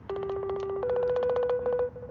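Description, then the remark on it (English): A phone line ringing on a call, a steady low electronic ringback tone held for about two seconds with a faint rapid pulsing texture, heard alone at moderate volume. “It's ringing, y'all.”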